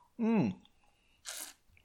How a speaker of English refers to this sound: So for today's chapter, I'm going to be sipping on a nice Jim Beam on the rocks. That's right, I love this Kentucky Straight Bourbon.